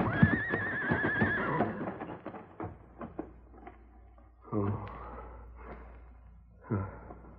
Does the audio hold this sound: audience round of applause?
no